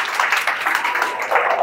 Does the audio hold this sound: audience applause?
yes